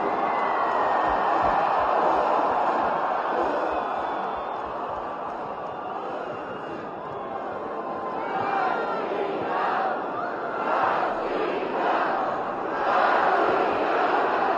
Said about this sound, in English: There are probably somewhere between 75,000 and 100,000 people attending this speech and cheering Putin on the whole time. Here is the scene as he enters.